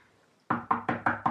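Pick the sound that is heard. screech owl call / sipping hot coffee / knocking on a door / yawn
knocking on a door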